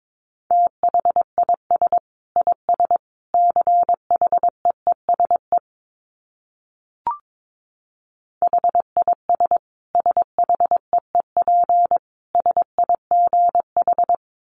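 Morse code tones at 22 wpm: a steady mid-pitched beep keyed rapidly into short and long pulses, sending two bursts of characters separated by a pause with one brief click, no voices.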